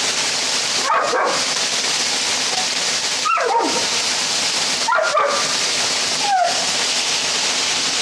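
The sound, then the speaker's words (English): A dog, scared of the water, barks and whimpers in short, high-pitched bursts, about four separate outbursts spaced a second or two apart, over the steady loud roar of rushing water from a waterfall it is close to. “My dog likes to destroy the natural beauty of everything.”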